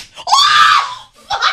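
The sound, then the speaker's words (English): A brief burst of noise from a whip strike, then a loud, sustained high-pitched scream lasting most of a second, followed by a shorter second cry. “That was the whip, and that was the nay-nay.”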